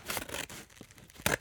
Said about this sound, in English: I'm going to open it with some delicate play scissors here. Careful not to hurt myself, although I'm using my right hand here, which is odd, because I'm left-handed. You can hear this.